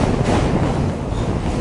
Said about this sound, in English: Like, I'm on the Manhattan Bridge right now, you might hear the subway passing by.